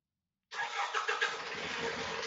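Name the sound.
car engine starting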